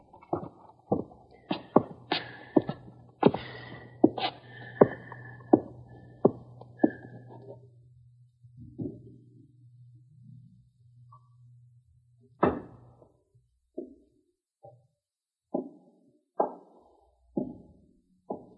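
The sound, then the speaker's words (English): A steady run of sharp footsteps on a hard floor as someone walks away down a hallway, then a pause and a few slower, spaced steps. A low hum sits under the first stretch, and no one speaks. “Yeah, keep going so he can hear your steps going down.”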